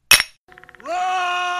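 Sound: glasses clinking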